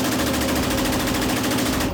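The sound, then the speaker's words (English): A fully automatic machine gun fires one continuous, rapid burst of evenly spaced shots for about two seconds, loud, with no voices. “Let's go shoot a fully machine gun.”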